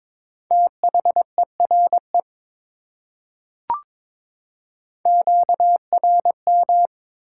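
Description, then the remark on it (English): Steady mid-pitched Morse code tone keyed in quick dots and dashes at 22 words per minute, spelling the word 'interference', two bursts separated by a short pause with a single sharp click between them, clean and alone with no voices. “Interference.”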